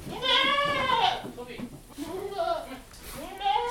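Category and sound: animal, baby goats bleating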